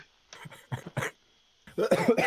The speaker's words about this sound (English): I was laughing and it developed into a cough, probably because I'm gagging at how bad the NFC East is.